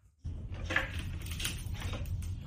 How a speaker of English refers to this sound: Hear that creaking? Oh, dude. Jack points don't do that.